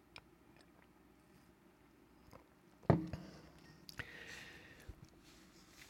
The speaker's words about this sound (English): And finally, most important, let me give a sip of coffee first.